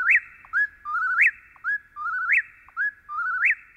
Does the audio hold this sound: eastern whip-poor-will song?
yes